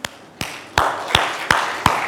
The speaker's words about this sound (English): How many of you are serving right now in a ministry? Can we clap for them?